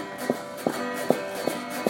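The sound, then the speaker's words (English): Feet stomp in a steady rhythm, about five firm thuds spaced evenly apart, moderately loud over a faint continuous background hum. “Okay, I think that we can stomp out our feet and go a little bit.”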